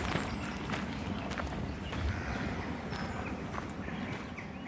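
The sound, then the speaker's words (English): Steady footsteps crunch along outdoors at a walking pace on a stroll, over a constant rustling ambience with faint birdsong in the background; no one speaks. “So guys, we've reached the end of our little stroll, our stomp.”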